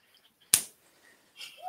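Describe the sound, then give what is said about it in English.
A single sharp hand slap, a young girl slapping her father's hand, a loud crisp smack that dies away quickly, followed after a pause by some faint rustling. “That was a That's slap.”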